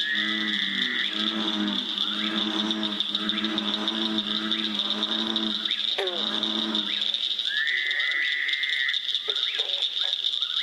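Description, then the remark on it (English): A dense chorus of frogs calling at once: a steady high-pitched peeping drone throughout, with repeated lower croaking calls in rhythmic bursts and occasional trills, with no one talking. “has recorded a CD of frog calls called …”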